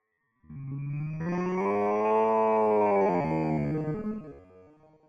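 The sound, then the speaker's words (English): A long, drawn-out cartoonish cow moo from a video game as the cow is launched, rising and swelling in pitch before trailing off, heard alone for several seconds like a game sound effect. “I think we launched the cow.”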